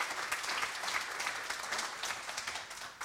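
An audience applauds steadily for three special guests, a dense, continuous patter of many hands clapping at once, sustained at an even level throughout without any voices standing out.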